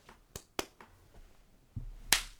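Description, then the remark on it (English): A hand, with rings taken off, slapping a person: a few light, sharp smacks early on, then a pause and one louder, crisp slap near the end. No voices. “I still have to slap you.”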